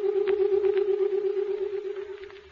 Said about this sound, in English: The door's closing.